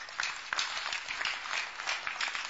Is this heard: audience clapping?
yes